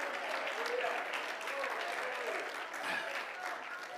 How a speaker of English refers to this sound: Come on, let's clap our hands and praise him this morning.